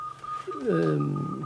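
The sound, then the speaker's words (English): A high, thin Morse code tone sounds from a radio tuned to a Polish station, carrying on steadily through the short stretch, while a voice joins partway through and talks over it. “That's a Polish station. Is it? That's the Morse code.”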